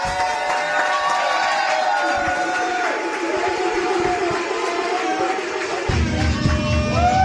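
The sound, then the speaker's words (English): A crowd claps and cheers loudly and steadily for several seconds at the host's call for applause, many voices whooping and shouting over dense applause that swells slightly toward the end. “Okay, for neither one, let me get an applause.”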